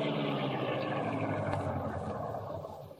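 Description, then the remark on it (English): A car engine rumbles steadily, then eases off and quiets as the car, the Black Beauty, pulls close to the back of a building in a dark back alley and stops. “Pull close to the building and stop.”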